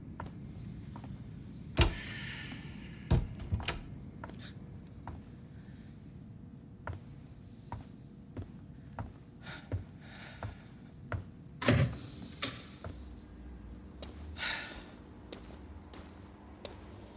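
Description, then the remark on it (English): Someone climbs into a car amid low interior rumble: scattered clicks and shuffling, then a few solid thumps as a door is pulled shut. No one speaks. “Just got in the car.”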